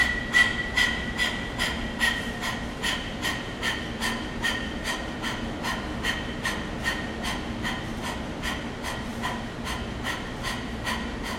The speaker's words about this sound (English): Let all the air out. Inhale, breathe in through the nose. And start panting as you move your arms. And let's begin.